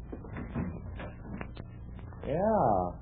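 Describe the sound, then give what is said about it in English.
A door is opened: a few scattered knocks and handling clicks lead into a loud, drawn-out creak of hinges that rises and falls in pitch. “Well, let's see what's on the other side of that door. Must lead to something.”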